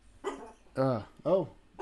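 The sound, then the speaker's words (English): A dog barks three times in quick succession, loud, each bark sharp and tonal with short pauses between them. “Upsetting the dogs.”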